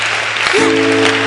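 A crowd applauds with dense, steady clapping that fills the whole moment, loud and close, with a low sustained tone rising underneath partway through.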